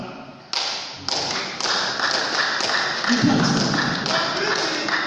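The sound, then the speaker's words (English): Crowd clapping starts abruptly and quickly builds into a dense, steady wash of many hands. It stays loud and sustained throughout, with a low murmur of voices underneath. “Oh, this piece of clapping is very good.”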